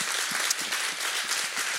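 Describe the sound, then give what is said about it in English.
An audience applauds in a steady, dense wash of many hands clapping at once, fairly loud, with no voices standing out above it. “Wow, it's pretty cool how, you all can clap for that if you want, for sure.”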